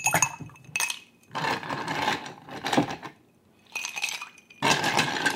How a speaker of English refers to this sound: So we're going to fill the cocktail glass with ice.